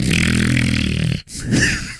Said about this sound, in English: That was me snorting, you know, sprinkles off the microphone.